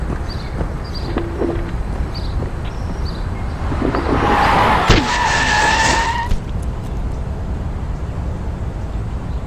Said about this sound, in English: That was the sound of, I think, him getting hit by a car.